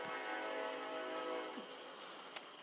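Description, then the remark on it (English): A train passes on tracks near a home in Ohio, a steady, fairly faint rumble with a droning tonal hum that holds throughout and eases slightly near the end. No one speaks. “That was a fucking train. I live where there's two fucking train tracks.”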